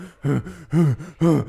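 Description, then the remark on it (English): A voice imitates heavy panting: three loud, breathy, voiced huffs in a quick steady rhythm, with short gaps between them and no other talk. “So I hear panting, like what you heard.”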